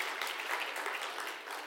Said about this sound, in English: That's my wife. Now you can clap.